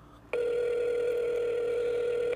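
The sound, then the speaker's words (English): An incoming phone call rings with a steady electronic tone that starts abruptly and holds at an even, fairly loud level for about two seconds before cutting off. No one speaks. “I text him, so he's going to call, so it's not.”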